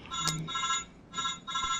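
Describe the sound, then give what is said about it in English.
A mobile phone sounds a bright electronic melody for an incoming text message, in two short bursts separated by a brief pause. The tones come through moderately quiet with no one speaking. “Somebody's cyber phone is ringing.”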